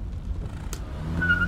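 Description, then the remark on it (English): A car engine idles with a low, steady rumble, a sharp click cuts in partway, then the motor revs up with a rising whine as the car drives off heading west, moderately loud. “So y'all hop in the car, and Nichols starts the engine, and you drive off heading west.”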